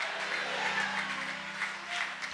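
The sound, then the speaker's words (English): An audience claps steadily in dense, sustained applause, with scattered raised voices and shouts blending into the noise throughout. “Clap your hands and shout hallelujah.”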